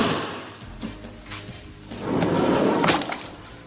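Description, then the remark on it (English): A heavy metal morgue cabinet drawer is hauled open, its long grinding slide swelling louder midway and ending in a solid clunk, with no voices. “Let's check the drawers. I call these my necrophile cabinets.”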